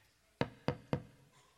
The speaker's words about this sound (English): Does anybody hear knocking? Well, are you going to open the door?